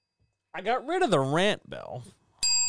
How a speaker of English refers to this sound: I got rid of the rant bell because I was trying to, like, you know, put like some extra polish and spin on stuff because I thought that's what people wanted, or I thought that might get me more than, like, 2 people watching.